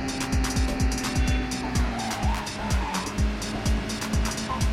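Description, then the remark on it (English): A race car engine revs hard and continuously, its pitch dropping again and again in quick shifts, while a sustained high tire squeal runs underneath, loud, with no voices. “No, this is the second race with this car, right?”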